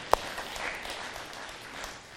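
A crowd applauds steadily for about two seconds, a dense, even patter of many hands, opening with one sharp, louder clap and tapering slightly at the end. No voices stand out.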